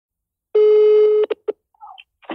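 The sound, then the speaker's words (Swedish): A steady electronic telephone tone holds for under a second, followed by a few short dialing beeps in quick succession, then faint line noise; clear, with no talking. A call being placed to LO, the owner of Aftonbladet. “Jag lyckas i alla fall inte med det, så jag ringer till Aftonbladets ägare, LO, istället.”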